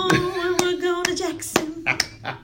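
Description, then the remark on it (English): Backhanded clapping imitating a singer's clap: four or five sharp, slightly dull claps in a steady rhythm about every half second, sounding over a sustained, held tone that runs underneath. “She always clapped like this.”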